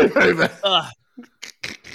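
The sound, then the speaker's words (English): A throaty, strained vocal sound gives way to a string of short, harsh coughs in quick succession, fairly loud, with brief pauses between them. “Coughing up a long asset.”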